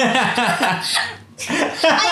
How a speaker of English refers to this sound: I've had hiccups. I've had hiccups all day. And I had them right before, while we were practicing, right before we performed, I drank my whole water bottle really fast.